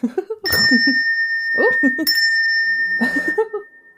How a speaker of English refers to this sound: Are your family ever like, why is he ringing that fucking bell at 6 a.m?